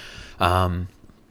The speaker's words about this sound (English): Hold on. I got a burp.